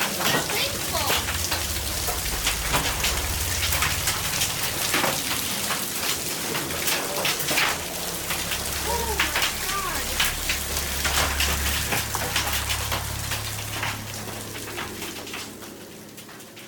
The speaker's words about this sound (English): Any thunderstorm which produces hail that reaches the ground is known as a hailstorm.